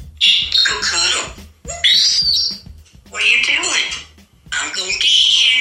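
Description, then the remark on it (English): A parrot speaks in a squawky, high-pitched mimicry of a human voice, saying "I'm going to get you" in what sounds like a southern accent, four bursts of phrase-like chatter with short pauses between, loud. “The parrot saying, I'm going to get you.”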